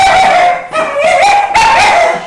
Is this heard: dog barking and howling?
yes